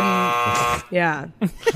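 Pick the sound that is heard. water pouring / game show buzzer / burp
game show buzzer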